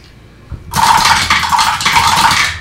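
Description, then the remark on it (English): A brief knock, then loud, continuous clattering of five small hard six-sided dice rattling and tumbling for about two seconds, with no voices. “So, 5-6 sided dice.”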